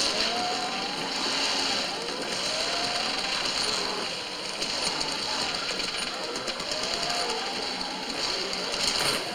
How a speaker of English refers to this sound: I love the sound of those engines because there's no idle gentle into mm-hmm. 600 RPMs. It's just 0 to 600 RPMs. Vroom, yeah. Vroom, vroom.